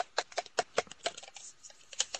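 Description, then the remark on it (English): Dice are rolled across a hard surface in a rapid, uneven burst of sharp little clicks that bounce and settle over a couple of seconds, coming up six, fairly quiet, with no voices. “Roll your dice and see what you get.”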